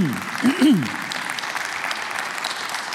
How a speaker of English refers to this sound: I appreciate y'all clapping. You know why? It gives me a chance to get a little drink of water. I appreciate that.